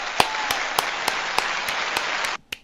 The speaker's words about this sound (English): Let's get some applause.